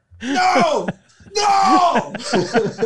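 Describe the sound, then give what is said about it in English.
A person, screaming in character as the Riddler, lets out two loud, strained theatrical screams separated by a brief pause, with the second cry breaking into ragged, wavering groans. “It's just trans Riddler screaming.”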